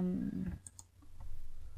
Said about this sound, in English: Because I'm starting typing now. Tappy tappy tap.